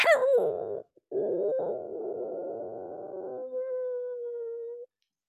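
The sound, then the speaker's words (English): A human voice tries to imitate a puppy, producing whiny, wavering howl-like tones that break briefly, then trail into a steady, thin whimpering note before stopping. “And Aim says, sounds like a puppy.”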